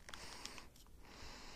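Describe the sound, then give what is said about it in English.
A few quiet sniffs, short airy inhales at the nose, at a Plumpy'Nut survival food packet in a plastic foil wrapper, mixed with faint crinkling of the packet, with no talking. “All right, so I'm going to give it a sniff.”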